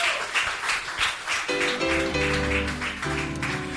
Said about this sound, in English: Give Jesus a mighty hand clap, my friends.